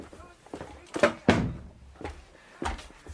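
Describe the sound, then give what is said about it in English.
A door swings shut with a couple of solid wooden clunks and a latch-like knock, followed by a fainter thump a moment later. “Never talk confidences with doors open, D'Artagnan.”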